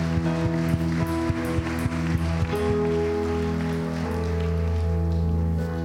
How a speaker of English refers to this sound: Let's give Him a hand clap of praise in this house right now.